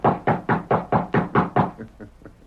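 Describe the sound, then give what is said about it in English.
A rapid series of about seven firm knocks on a wooden ranch house door, evenly spaced, followed by a few fainter, softer taps trailing off. “The next morning, he rode to the Lazy M, dismounted, and rapped on the ranch house door.”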